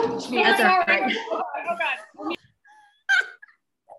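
A dog whines and whimpers in a long, high-pitched run, then gives a couple of short yelping barks with brief pauses, moderately loud.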